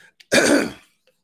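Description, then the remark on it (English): A single loud throat clearing, a rough, raspy burst lasting about half a second, followed by silence. No speech is heard. “If you caught me coughing, that's on me and on you for watching.”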